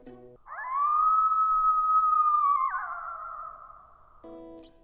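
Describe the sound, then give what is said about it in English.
A single loud coyote howl sweeps up quickly, holds a long, steady high note, then wavers and slides downward as it fades, with a short low sound before and after it. “Coyotes have a very high-pitched howl with short bursts that rise and fall.”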